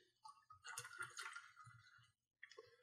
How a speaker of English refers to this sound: pour your fucking drink. Guy's been waiting for 10 seconds.